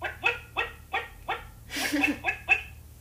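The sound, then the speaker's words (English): A person's voice imitates the call of the wet-wet, a big ground-digging bird of southern Chile: a quick, steady string of about eight short, yelping mid-to-high notes, loud and clear, with a breathier, rougher burst partway through. “And it's called a wet-wet because it goes like this.”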